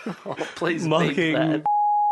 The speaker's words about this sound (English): Oh, please beep that.